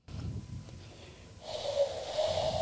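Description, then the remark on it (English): A person tries to imitate a loon call, starting with rough, breathy blowing and then producing an airy, wavering whistle-like tone that stays mostly breath. A single attempt, no talking. “That sounds like air. This is the loon breathing.”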